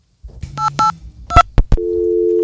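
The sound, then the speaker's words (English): Telephone tones with no voices: a few short electronic beeps and sharp clicks, followed by a steady, loud low tone that holds to the end, like a busy signal on the line. “Worst phone ever.”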